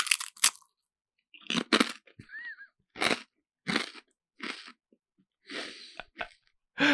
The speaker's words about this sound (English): This bag of chips is staring me. Eat a chip. No way. It becomes eat one. A mukbang. No. What's it called? Yeah, mukbang. No, the other thing. Where they're chewing on the microphone. Oh, ASMR. Go ahead.